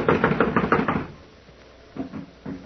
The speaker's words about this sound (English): It's locked from the inside. Well, someone is definitely in there. I'm going to knock. Now listen closely.